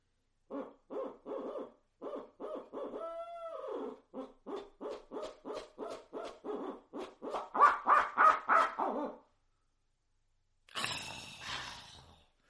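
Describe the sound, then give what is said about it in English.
A hunter imitates an owl's laughing call, known as owl laughter, with a long run of rhythmic hoots that build in pitch and loudness into a cackling climax, followed by a short pause and a breathy rustle. “And we'll call this, you'll hear it, and this is called owl laughter.”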